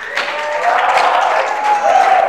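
An audience applauds in a steady, dense patter of many hands clapping, sustained at a fairly loud level for a couple of seconds, with a faint tonal hum beneath.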